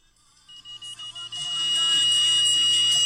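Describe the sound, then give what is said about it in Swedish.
A car's front proximity sensor, set off while the car is in a queue, beeps in a quick series of evenly spaced high-pitched pulses, then merges into one loud, steady continuous tone with no pauses. “Så det låter konstant som att det är någon som är för nära bilen.”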